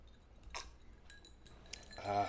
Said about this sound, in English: And then you just put your drink down. It's like, beep.